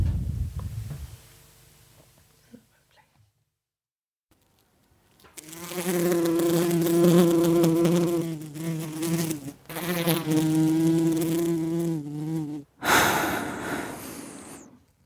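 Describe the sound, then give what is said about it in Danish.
A loud bee buzz heard through speakers drones steadily for several seconds, briefly cuts out, then resumes before stopping, followed by a short breathy rush. Quiet low rumbling comes before it. “A buzz is heard in the speakers, and the bee begins to speak.”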